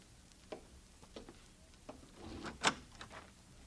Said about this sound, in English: It's them, Cole. All right, Bob, open the door for them.